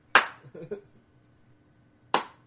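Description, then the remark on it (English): Two sharp, loud claps spaced about two seconds apart, a slow, deliberate sarcastic clap, with a brief faint murmur just after the first one. “I'm going to start keeping a tally of how many people start sarcastically clapping at me.”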